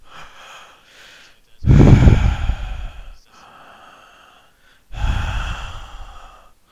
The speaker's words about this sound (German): Nur atmen rein ist halt ein bisschen schwierig.